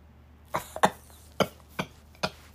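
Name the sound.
coughing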